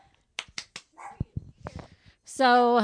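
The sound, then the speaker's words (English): A dog lets out one loud, drawn-out bark near the end, after a few sharp clicks and a short stretch of quiet talking. “My dog's here today.”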